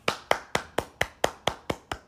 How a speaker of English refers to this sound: That was me clapping. I celebrate you.